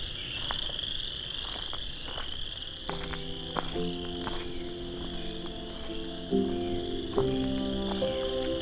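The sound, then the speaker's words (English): A dense chorus of frogs croaks loudly and continuously, layered over a steady high insect-like trill, with overlapping calls stacking up and swelling toward the end. No one speaks. “I wonder if just because of how loud the frogs are, it's only singing in the tones it knows it'll be heard in.”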